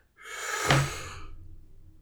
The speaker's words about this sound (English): Out. Don't blow your air over here. Listen, I need to do my calming breathing exercises.